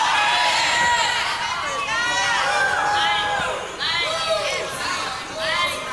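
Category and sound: crowd, audience shouting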